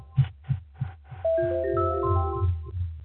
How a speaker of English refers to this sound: Just a second, I'll turn that echo off. I don't know why that does.